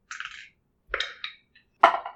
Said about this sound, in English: all three of you roll a d20.